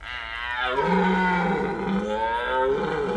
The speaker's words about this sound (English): The creature roared, readying its jaws for murder.